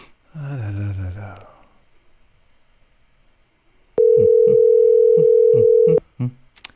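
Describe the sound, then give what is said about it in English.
A brief voice sound, a pause, then a single steady two-second ringback tone on a phone line, loud and clear, cutting off abruptly as someone waits for the call to be answered. “Let's wait for the phone to answer the call.”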